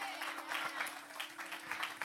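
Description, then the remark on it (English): Scattered, half-hearted hand clapping from an audience, thin and uneven rather than a full ovation, lasting about two seconds over a steady low hum. “But I can tell by 50% hand claps that we don't really believe this.”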